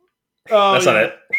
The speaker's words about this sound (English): Trying to whistle for the goats.